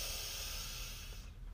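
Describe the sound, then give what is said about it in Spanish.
A single slow, deep breath drawn in steadily during guided breathing, inhaling to a count of three, a soft airy rush lasting over a second before its hiss fades out. It is quiet, with no talking. “Respiramos entonces internamente 1, 2 y 3.”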